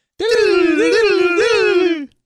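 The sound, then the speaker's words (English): Voices imitate the sound effect from the film Wayne's World with a sustained, wavering sung tone that dips and rises in pitch a few times, lasting about two seconds and stopping abruptly. There are no words. “You want to do the sound effect from Wayne's World?”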